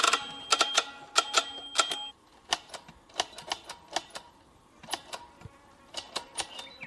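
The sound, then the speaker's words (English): Rapid, irregular mechanical clicking like old typewriter keys, sharp taps in quick bursts and scattered singles, fairly loud, with a faint hum underneath and no talking, made by a man counting moving sperm cells in tiny samples on a microscope slide. “I know it sounds like Andreas is typing on an old-fashioned typewriter, but he's actually counting how many sperm are doing what”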